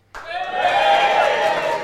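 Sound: audience cheering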